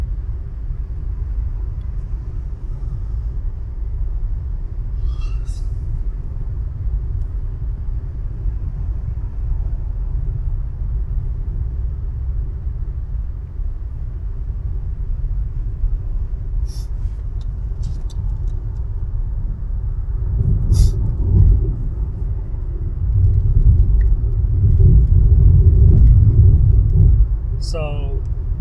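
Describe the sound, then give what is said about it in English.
Steady, deep road rumble from inside a car moving in traffic crowded with cars of all sizes, a continuous low drone that swells louder toward the end, with faint muffled voices now and then. “More cars than people, I feel like. All sizes of cars, too.”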